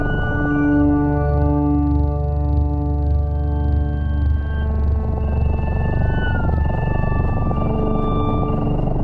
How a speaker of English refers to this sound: So these people have, these scientists have spent an awful lot of time trying to figure out exactly what kind of music cats respond to. And this is what it sounds like.